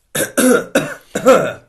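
Four loud, harsh coughs in a quick, uneven burst with a brief pause before the last, throaty one. No talking.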